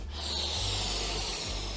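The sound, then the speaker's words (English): A steady, airy hiss of a balloon inflating, lasting under two seconds, with a low rumble beneath and no voices. “I think of iDubbbz, I think of balloon inflating.”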